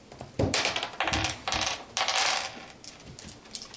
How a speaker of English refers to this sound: We have tomb dice. I'm gonna use the tomb dice.